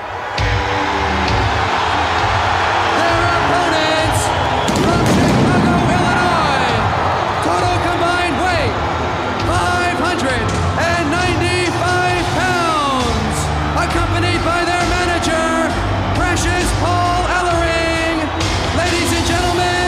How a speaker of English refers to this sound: This crowd is just so hot. One of the things I like so much about this event is, so you get the Road Warriors taking on the Skyscrapers, and the crowd reaction to the Road Warriors when they come out is unbelievable on the show.